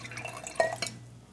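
A short, faint pour of an extremely heavy, dark stout into a glass: a brief splashing trickle with a bright, drip-like plink midway, fading out after about a second.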